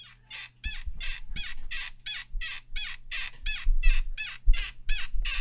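A Foley sound effect of bed springs squeaking in a steady, fast rhythm, about two or three high, creaky squeals per second, each paired with a soft low thump, repeating with no one talking.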